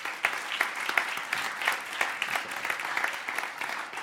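A crowd applauds steadily, many overlapping hand claps forming a dense, even wash of sound with sharper individual claps poking through, at moderate loudness throughout.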